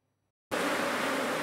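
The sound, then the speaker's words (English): A dense swarm of Yemeni honeybees hums loudly and steadily around a beekeeper's hives in Yemen, a thick continuous buzz that starts suddenly after a brief silence and fills the rest of the moment. “This sound is the buzz of business and music to the ears of beekeeper”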